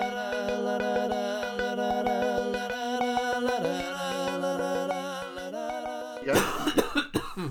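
A tuneful musical passage with steady ticking plays, then ends abruptly as a loud hacking cough breaks in, several harsh rapid bursts in the final second.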